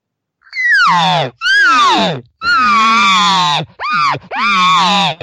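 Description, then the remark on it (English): Five loud cow elk calls in quick succession: nasal, whiny, demanding mews that start high and slide downward, each lasting under a second, with no talking in between. “So here's what this cow would do.”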